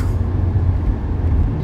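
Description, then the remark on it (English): Steady low rumble of a large truck on the road that the driver is trying to pass, heard from inside a moving vehicle, with continuous engine and road noise and no talking. “This truck does not want me to pass it.”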